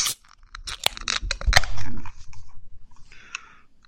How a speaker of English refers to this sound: But I'm ready to be done talking about it, and we can crack these things open and go for it. Let's crack it open so they don't get hot. Here we go. 3, 2, 1, crack.